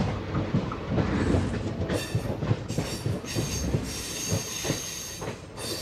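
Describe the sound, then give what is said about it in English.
A passenger train of the Indian Railway rolls steadily along the rails in India, wheels rumbling and clattering with bursts of high metallic squeal and hiss, without any voices. “takes a trip on the Indian Railway to discover the complex relationship the country has to love, life, movies, and more.”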